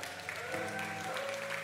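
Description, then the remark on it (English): A short stretch of audience applause, a dense, steady patter of many hands clapping at moderate loudness, with faint overlapping tones and murmurs underneath. “It's easy to get applause here.”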